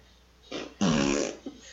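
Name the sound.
soundboard fart noise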